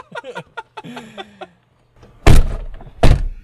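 Car doors are opened on a hot day: softer clicks and creaks from the handle and latch, then two heavy thunks about a second apart.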